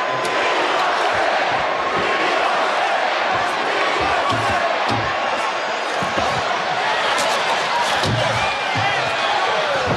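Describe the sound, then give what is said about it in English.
A large arena crowd at a wrestling event chants "We want Sting" and roars continuously, a dense wall of many voices with rhythmic pulses and occasional thuds cutting through, loud and sustained throughout. “The crowd's chanting, "We want Sting."”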